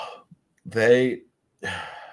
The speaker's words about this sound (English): yawning, folks.